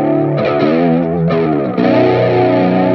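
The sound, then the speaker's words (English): Clean electric guitar playing sustained chords through an Astra reverb pedal, notes blooming and washing into one another in a steady, loud, continuous swell with no voices. “But, like, yeah, like, on cleans and stuff like that, I use this Astra pedal lately.”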